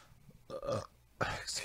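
Two loud burps in quick succession, the first drawn out and guttural, the second sharper and abrupt, with no talking around them.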